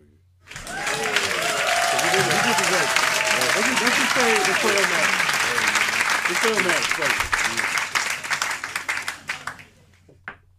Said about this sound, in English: Before we get into the negative of it, let's get a round of applause for … and his Grammy.